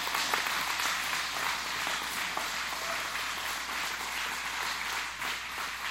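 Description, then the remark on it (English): An audience claps hands for the Lord in a sustained, dense burst of applause, many overlapping claps forming a steady, bright wash of sound with no voices standing out. “You gonna patty cake or you gonna give the Lord a hand clap?”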